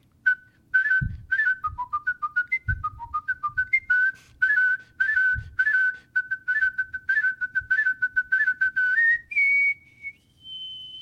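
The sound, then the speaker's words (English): A person whistles the William Tell Overture by Rossini alone, with quick staccato repeated notes in a galloping rhythm, clear, ending on a rising, sustained high note. “But anyway, so I whistled.”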